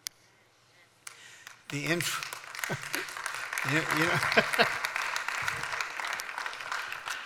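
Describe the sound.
A church audience breaks into sustained clapping after a quiet start, a dense steady patter lasting several seconds, with voices calling out and talking over the applause.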